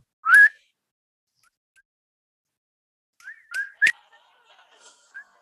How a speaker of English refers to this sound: Oh, damn. Your whistle's too high.